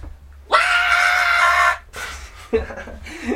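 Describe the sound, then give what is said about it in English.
A person lets out one loud, sustained wailing scream, imitating a crying baby, lasting about a second; quieter vocal sounds and talking follow. “That's how you do the whole screaming thing. You copy babies. Wah!”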